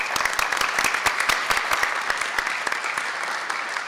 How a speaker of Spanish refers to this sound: Un aplauso.